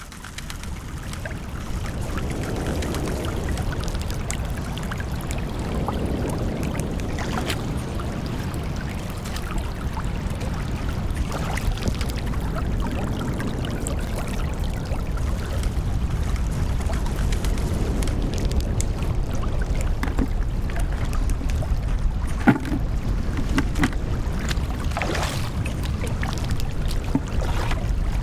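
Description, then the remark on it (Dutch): Sea water lapping and sloshing steadily, a continuous wash of watery noise with small splashes and gurgles throughout, no voices. “Dus om die zee wat dichterbij te halen.”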